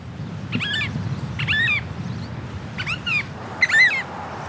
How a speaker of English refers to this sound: It's a beautiful oyster catcher just next to the road. It's those bird sounds that I've really missed being away from New Zealand.